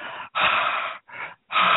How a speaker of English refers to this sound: as long as he stops breathing in my ear or whatever he's doing.